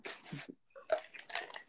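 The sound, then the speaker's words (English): Quiet sips of water: a few short wet slurping and swallowing noises in quick succession, with faint mouth clicks and no talking. “Gotta get a little sip of some water real quick.”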